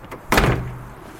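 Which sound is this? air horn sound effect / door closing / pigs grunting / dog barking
door closing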